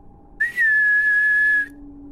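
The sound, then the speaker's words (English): A single sustained human whistle, loud, starts with a quick upward rise and then holds one steady high pitch for over a second before cutting off; a person whistling to call cats in a dark alleyway next to a dumpster. “I continued out the back door into the dark alleyway next to the dumpster. I whistled.”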